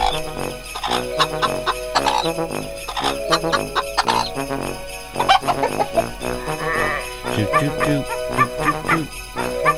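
Chickens cluck in quick, repeated, loud bursts, layered over a busy, tinkling backdrop that runs continuously for about ten seconds.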